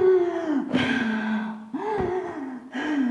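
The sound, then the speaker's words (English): A person imitates the heavy, labored panting of walking quickly at high altitude, above 14,000 feet near Chandratal Lake, with about four loud, voiced gasping breaths in a steady rhythm, with no words spoken. “And when I started walking quickly, my breathing became very heavy. I was breathing like this.”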